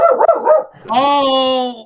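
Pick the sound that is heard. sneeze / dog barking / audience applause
dog barking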